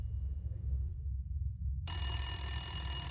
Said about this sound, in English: I was at my homeboy's house when the phone rings.